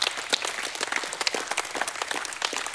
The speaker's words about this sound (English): Can we give God a hand clap of praise tonight?